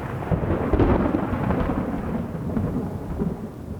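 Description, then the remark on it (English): A thunderstorm rumbles with deep, rolling thunder over a steady wash of heavy rain, loud, with no voices. “After saying that, the storm broke over the city of the dead.”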